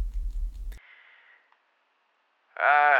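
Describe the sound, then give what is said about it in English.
A drawn-out yawn: a breathy inhale fades away, a brief pause follows, then a loud, voiced groan swells in at the end. “You hear a long, protracted yawn.”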